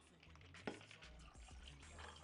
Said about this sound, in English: And now we are going to pour.